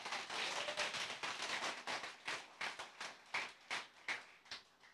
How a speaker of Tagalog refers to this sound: Lakasan mo, palakpak mo.